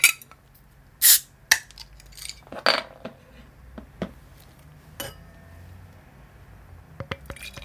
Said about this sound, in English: This episode is focused around saison, and it would be remiss of me to do anything other than drink a saison DuPont during this episode. So I will open that presently, and if you're drinking along at home, please do the same.